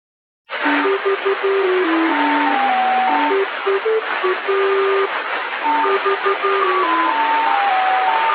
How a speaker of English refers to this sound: The Lincolnshire Poacher got its name from an English folk song it played at the top of the hour, followed by numbers. And here's a clip from the Lincolnshire Poacher number station, which was recorded in 2007, just 1 year before it went off the air.